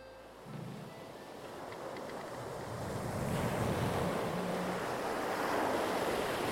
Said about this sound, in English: And it is through these terrible waves and swells that our crew of silly pirates must pass.